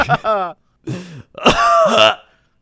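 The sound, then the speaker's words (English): A person imitates a raspy smoker's cough in three rough bursts in quick succession, the last two harsh and gravelly, loud, then silence. “And then she died of smoker's cough.”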